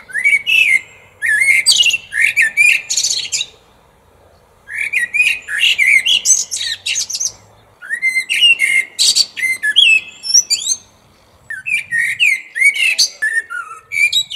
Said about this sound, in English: I can assure you that a blackbird in France does not sound like a blackbird in the States, but this is what a French blackbird sounds like.